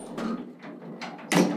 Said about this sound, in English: He tapped a button on a keyboard on his desk, and the double doors behind Emilia and Chancellor Hallam slid shut.